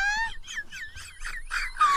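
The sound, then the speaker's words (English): A beluga whale, presented as singing "Oh, I do like to be beside the seaside", sings in a rapid series of high, squeaky whistles and chirps, each a short rising-and-falling sweep, ending in a long falling whistle, with no talking. “I've now got a beluga whale singing, oh, I do like to be beside the seaside.”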